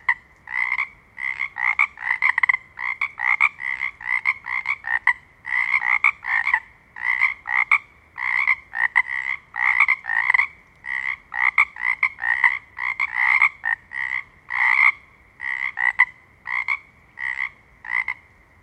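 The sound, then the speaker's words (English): A dense chorus of frogs croaking in rapid, overlapping pulses, loud, continuing steadily without pause and no voices present. “So what we hear is, one frog, then another frog, then a whole bunch of frogs, and then we don't hear any frogs.”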